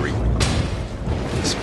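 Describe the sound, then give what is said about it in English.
Deep, rolling thunder rumbles continuously, with two sharper crackling bursts cutting through the low boom, from an ominous thunderstorm in a movie trailer as Jake Gyllenhaal's character boards a plane. “Okay, so Jake Gyllenhaal's getting on a statement on a plane in an ominous thunderstorm at the minute.”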